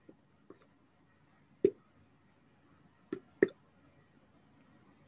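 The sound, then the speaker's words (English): Someone imitates water dripping in a cave with their mouth: a handful of wet plops and clicks at irregular intervals, two louder ones standing out against quiet background hiss. “Does it sound like the natural dripping of water in a cave?”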